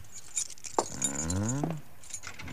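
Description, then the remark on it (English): Keys jangle softly as someone tries them in the lock of a locked closet door, a scatter of light metallic clinks across a couple of seconds, with a brief rising squeak in the middle. “Where are those keys we found on the desk? Here they are.”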